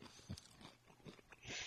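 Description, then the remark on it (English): A crunchy nacho chip is bitten and chewed, with several sharp, brittle crackles in quick irregular succession and a bright, crisp snap near the end. “There's a lot of crunch in that. That one was a crunch one.”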